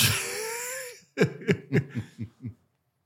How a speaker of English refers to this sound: Water break.